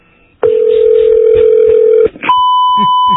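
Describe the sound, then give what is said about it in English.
A loud, steady telephone tone sounds for over a second and a half after a phone call is hung up, breaks off, then a second, higher-pitched continuous tone takes over, with faint background murmur underneath. “I said, have a good day, ma'am. Bye. And hung the phone up.”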